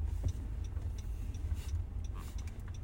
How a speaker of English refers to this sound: Let's parallel park up in this bitch. This is nice parking right here.